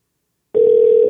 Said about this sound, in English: Let's see if he answers the phone. Oh, I'm calling the wrong number.